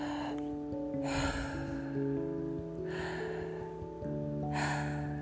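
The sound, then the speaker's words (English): Slow, deep breaths drawn in and pushed out as a deep-breathing exercise, about four airy bursts spaced a second or so apart, over a soft, sustained musical background. “I do like to get up and also do a little bit of deep breathing, just a few little bit of deep breaths in and out.”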